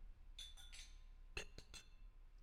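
glasses clinking

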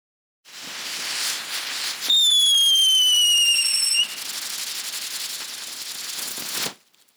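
fireworks going off

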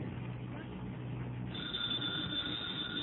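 telephone bell ringing

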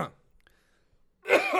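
coughing and throat clearing

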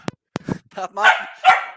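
dog barking

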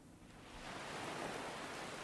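ocean waves and wind

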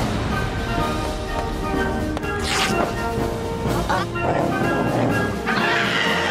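chickens clucking

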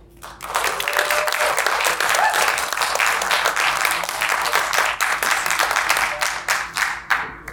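crowd applause and cheering

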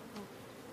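bee buzzing

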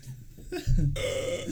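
sneeze

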